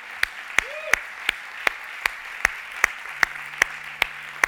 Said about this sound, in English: He's coming. Come on, let's keep clapping for him. He's on his way.